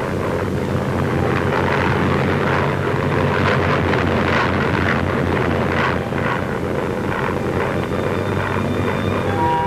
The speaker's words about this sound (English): The plane drops a pennant containing the requested information and also additional assignments for the expedition.